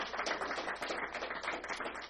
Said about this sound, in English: Y'all give Chris a hand clap of praise. I love this young man so much.